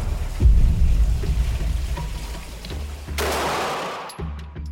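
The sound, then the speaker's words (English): A single loud gunshot from a 12-gauge shotgun booms near the start, early one October morning in Kafue National Park, its deep rumble echoing and lingering, followed later by a burst of rushing, hissing noise before the sound cuts off. “And at the Kafue National Park, there were doubts too, from the moment the gunshot rang out early that October morning. It's a loud boom.”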